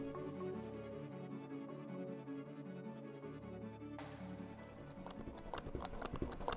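An artificial heart pump, a machine put in place of a man's removed heart, thumps in a fast, galloping rhythm like hoofbeats over a steady mechanical hum; the clattering beats grow sharper and more prominent in the second half.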